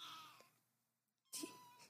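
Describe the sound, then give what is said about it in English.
A female cat meows twice, with a drawn-out, tonal call fading off, then a short gap and a sharper, louder second meow; no one speaks. “She's meowing so much that she's falling asleep with her mouth open.”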